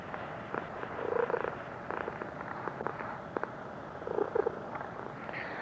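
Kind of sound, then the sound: animal, cat purring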